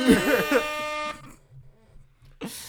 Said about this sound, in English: There's my air horn.